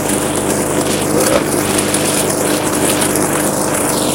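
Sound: lawn mower engine running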